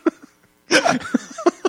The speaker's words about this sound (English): Sorry, I got the hiccups. Oh, you got a hiccup.